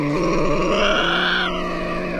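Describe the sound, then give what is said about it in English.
A Tasmanian devil screams in one sustained, harsh, rasping wail, loud and steady with dense buzzing harmonics and a growling, throaty edge that wavers slightly in pitch before cutting off. “Oh, and they scream like Linda Blair in The Exorcist. Here's a taste.”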